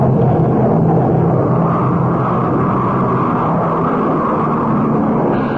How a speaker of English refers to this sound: There goes the plane back to England.